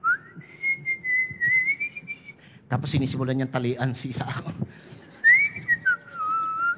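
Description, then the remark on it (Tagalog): Casual whistling of a meandering tune, clear, breaks off while a man speaks briefly, then the idle whistling resumes, sliding up and down in pitch. “Si Sipol-Sipol.”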